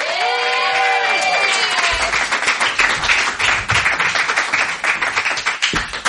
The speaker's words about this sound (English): Let's all give a round of applause for this man